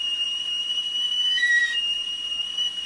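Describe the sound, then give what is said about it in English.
A stovetop kettle whistles steadily, a shrill, sustained high tone with bright overtones that briefly shifts pitch midway before settling back into its continuous piercing whine, with no voices. “That is the sound of a stovetop kettle whistling.”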